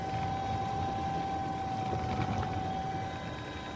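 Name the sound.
helicopter rotors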